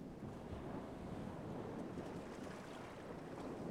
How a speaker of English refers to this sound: He would just watch another breaker come in, and then another. And another, so that he might see those shining rainbows that came and went in the sunlit spray.